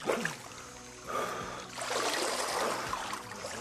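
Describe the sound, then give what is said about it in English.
Steady wash of water ambience at an indoor swimming pool where a diving class practices, with soft splashing and lapping that swells partway through, echoing. No voices are heard. “That's one reason for taking the class to the nearby swimming pool.”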